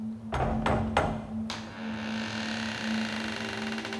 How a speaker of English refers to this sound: You hear anything inside? Nope. Try the knocker.